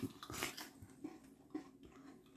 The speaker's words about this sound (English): You chewing the cap.